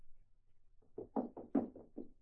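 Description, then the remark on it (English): Someone pounds on the locked door of Uncle Hiram's study with about six heavy, rapid blows in a steady rhythm, the thumps growing louder midway. No voices are heard. “Open the door! I can't get in!”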